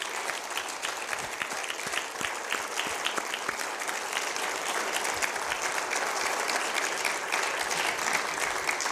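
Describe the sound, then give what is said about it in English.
An audience applauds military veterans steadily for the full nine seconds. It is a dense wash of many hands clapping at an even, fairly loud level, with no voices standing out. “If you have served in the military, can we have a round of applause for all our military veterans today?”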